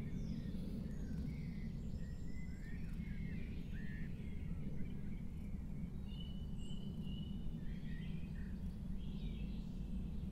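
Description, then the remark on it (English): Birds sing and chirp intermittently, their thin calls scattered across the whole stretch over a steady, heavy low rumble; no one speaks. “I think the birds are saying it better than either of us can, aren't they?”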